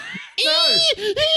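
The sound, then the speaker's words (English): A person's voice mimics a rabbit's scream: a loud, shrill, wavering squeal, breaking into three quick bursts after a brief low murmur. “I don't know if you ever heard a rabbit scream before.”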